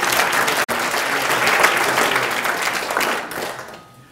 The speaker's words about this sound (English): And thank you, and round of applause for everyone who's made it possible.